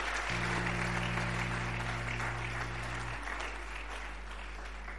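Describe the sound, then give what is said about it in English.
An audience claps continuously, a dense, even patter of many hands that holds steady for the full five seconds, with a low steady hum underneath for the first few seconds. “Are you clapping or you are doing something like?”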